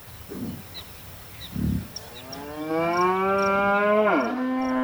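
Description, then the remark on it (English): A cow on a farm lets out one long, drawn-out moo, its pitch sagging at the end, after a couple of dull low thuds, while faint birds chirp in the background. “Every day, we're receiving many people from the town coming to see the cows.”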